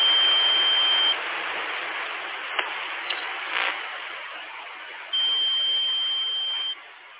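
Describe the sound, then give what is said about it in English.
A steady, high electronic tone sounds over constant radio-like static for about a second, gives way to hiss with a few faint clicks, then returns for another second and a half. “So these are the first real tones we've ever received.”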